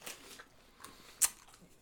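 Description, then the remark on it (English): Quiet chewing of Skittles candy: a few short, crisp crunches spaced irregularly, with one sharper, louder crack near the end. No talking. “You got to say why you're chewing the Skittle.”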